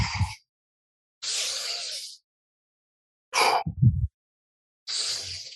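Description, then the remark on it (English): Four sharp, breathy bursts of air separated by short silences, forceful exhales made while demonstrating breathing for lat training, with no talking. “And as I exhale, I'm going to go.”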